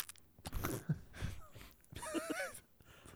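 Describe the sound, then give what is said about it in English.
Loud, exaggerated munching and chomping noises imitating a big hearty bite of mayonnaise: a few wet crunchy bursts followed by a wavering, drawn-out vocal groan. “The take mayonnaise a big hearty munch.”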